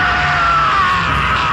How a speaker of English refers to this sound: It howled again, and the man's skin nearly turned inside out in horror. And with a scream of his own terror, the man leapt backwards.